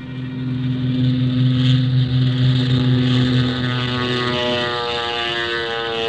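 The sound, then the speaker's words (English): A small propeller plane's engine drones steadily and loudly as it takes off from a jungle airstrip, its harmonic hum shifting upward in pitch as it revs, with no voices present. “We loaded Colonel Sawaka into the small plane.”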